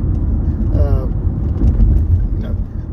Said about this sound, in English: This car, I guess it has to be at work in a few seconds because he has to he has to pass this car. I love when people drive like that.